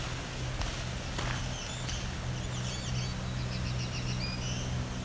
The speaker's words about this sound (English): I would say that's a black-throated green warbler making up a new song. Assuming that doesn't happen very often, because I haven't encountered it yet.